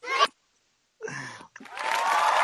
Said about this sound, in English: You know, I love the applause.